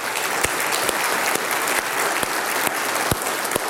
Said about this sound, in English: They're standing by the door. They are here with us today. Give them a round of applause, would you?